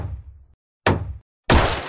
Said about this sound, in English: Oh, dude, what the fuck? You just knocked a huge hole in your wall.